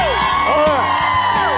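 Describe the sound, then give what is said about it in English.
A studio crowd at a morning TV show, at 8:30 on a Tuesday morning before Christmas, cheers loudly and steadily, a dense roar of many voices topped by high whoops and shouts that rise and fall throughout. “How's the crowd doing?”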